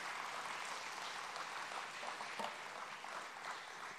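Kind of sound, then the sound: crowd, audience round of applause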